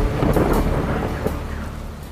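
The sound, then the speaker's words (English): A deep, rolling thunder rumble fills the space, heavy and sustained with low booming energy and a hiss of rain or wind beneath it, no voices present. “Storm goes on out of control. Deep in her heart, the thunder.”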